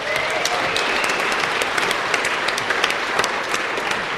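Steady, dense applause from a crowd, many hands clapping at once in a continuous rattling wash that holds at an even, fairly loud level for the whole stretch, with no voices standing out.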